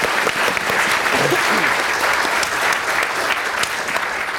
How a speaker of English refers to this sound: We'll give her a big round of applause anyway.